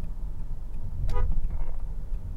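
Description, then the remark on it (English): A single short car horn honk, sounded by a driver at other people, over a steady low rumble of engine and road noise, followed by faint traffic. “People, I gotta honk at these people.”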